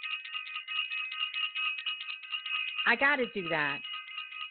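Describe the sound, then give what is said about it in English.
A bell is rung rapidly and continuously, giving a bright, high-pitched jangling that runs the whole time. Near the end a voice briefly calls out over the ringing. “I have to ring the bell for self.”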